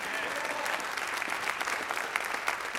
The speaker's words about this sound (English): Buddy, somebody ought to be on your feet clapping.